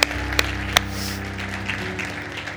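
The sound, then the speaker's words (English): An audience gives the Lord a big hand clap, a dense, steady wash of applause, with a few sharper individual claps popping out, over low sustained tones humming underneath. “Come on, let's give the Lord a big hand clap for that.”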